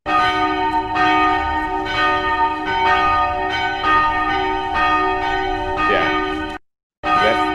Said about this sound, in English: I need you to ring that bell, bro. I need you to ring that bell. I need you to ring that bell. This is a first.